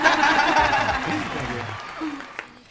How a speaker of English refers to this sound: We have some cheering. Woo! Thank you. Thank you.